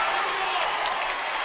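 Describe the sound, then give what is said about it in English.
A steady wash of crowd noise from Eagle fans cheering and applauding at a basketball game, dense and sustained without distinct peaks, with no clear individual voices standing out. “And the Eagle fans trying to make some noise.”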